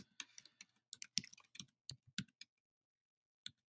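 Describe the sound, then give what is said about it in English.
Rapid keystrokes clatter on a computer keyboard as someone searches for an article, an irregular burst for about two and a half seconds, then a pause and a single final tap, fairly quiet. “Alright, so if you hear me typing away, I'm actually doing this.”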